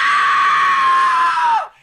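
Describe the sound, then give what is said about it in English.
A single loud, high-pitched scream from a girl, a sound effect, held steady for about a second and a half before cutting off sharply, alone with no talking. “There's another sound, like I can make this girl over here scream.”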